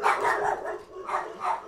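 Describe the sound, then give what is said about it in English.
Dogs bark in a quick run of several sharp yaps, moderately loud, with a brief pause before another burst of barking. No one speaks. “And there goes the dogs again.”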